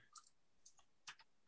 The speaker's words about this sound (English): With my mechanical keyboard, I mean fucking business.